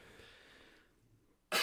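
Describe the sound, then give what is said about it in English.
After a stretch of near silence, a single sharp, loud cough bursts out right at the end, cut off abruptly. “Coughing.”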